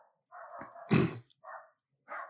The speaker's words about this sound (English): The dogs are going off outside right now, so somebody just showed up.